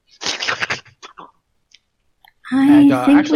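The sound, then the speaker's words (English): A voice imitates kobolds slurping and lip-smacking: a noisy sucking burst and a few small clicks, then after a short pause a throaty, gibbering vocal sound, fairly loud. “So mostly slurping and licking of lips, but you don't actually hear the words.”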